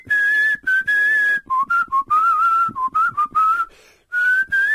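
A person whistles a melodic tune, a clear, bright pitch that rises and dips through a series of short phrases with brief breath pauses between them, and no talking.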